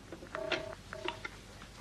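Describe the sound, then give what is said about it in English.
A telephone number, Hopton 5921, of a public house near the Elephant and Castle being dialed: two short tonal bursts mixed with small clicks and ticks, fairly quiet, with no voices. “Look, Steve, you take the phone.”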